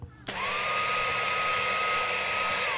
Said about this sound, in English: Great. I got one I know you'll love. Super fun, doesn't take up much space, will help around the house, and only needs to empty its waste once a month. Wow, really? That's hard to believe. Believe it. It's a cordless vacuum.